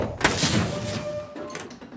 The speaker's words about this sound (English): Lock the door into this room. Hopefully the ship won't be able to get in.